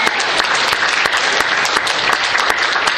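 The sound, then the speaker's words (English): An audience claps steadily and densely in applause for Apple, with many sharp individual claps blending into a loud, continuous wash of applause that fills the whole stretch without any voices. “Let's give a round of applause for Apple, because they are awesome, man.”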